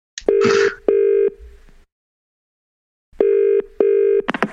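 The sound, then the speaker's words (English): A telephone rings for an incoming call in two double bursts, each pair of electronic trills separated by a pause, loud with no one speaking. “We've had a few calls from people. Let's see what we've got.”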